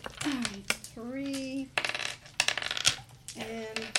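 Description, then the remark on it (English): A big handful of about 23 dice, rolled for damage in a tabletop game, clatters and rattles across a hard surface in quick bursts of sharp clicks while voices talk over the tumbling. “Roll me your damage again, but plus 12 dice.”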